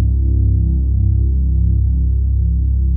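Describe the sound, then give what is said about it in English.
A loud, steady low-pitched mechanical hum drones continuously, with a slight wavering pulse as a medical scanner's table moves a patient out of the scanner. No voices. “The loud hum of the machine as it moves him out of the scanner.”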